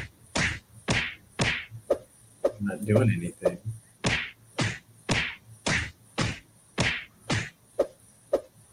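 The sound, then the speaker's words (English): A rapid series of sharp punching impacts from a video game character, about a dozen evenly spaced thwacks, with a brief spoken phrase cutting in partway through. “All right, so I'm punching.”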